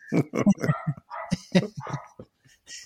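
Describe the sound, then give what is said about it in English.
A dog barks in a quick run of short, sharp yaps, several in succession over a few seconds, moderately loud, with brief pauses between bursts. “Hey, I can hear whose dog barking, man.”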